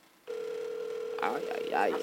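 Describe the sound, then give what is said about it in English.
A phone line tone starts abruptly and holds as a steady, continuous electronic hum while the call rings out, and people's voices begin talking over it partway through. “He might not answer.”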